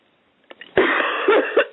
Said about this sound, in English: Just take a deep breath, sister, and cough it out.